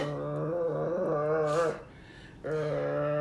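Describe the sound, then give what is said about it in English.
A small dog growls and whimpers in two drawn-out, wavering bursts separated by a brief pause, fairly loud with no talking over it. “Walk around with a dog, a little dog that barks like a ferocious dog, like it a monster, like a little thing, and it just shakes.”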